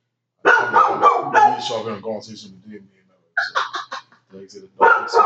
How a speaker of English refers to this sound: Some strangers, it's a cherry arch, one dog barks.